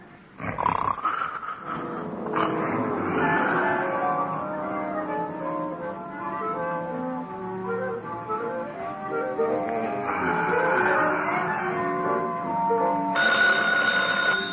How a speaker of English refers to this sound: Yeah? Oh, phone, Gino.